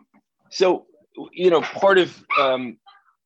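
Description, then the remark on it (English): Dogs bark in three or four short, yelping bursts, moderately loud, with brief pauses in between and no one talking over them. “Sorry, I'm waiting for my dogs to stop barking.”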